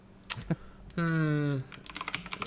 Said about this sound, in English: Let me type on the keyboard a second here. Let's get those clacks.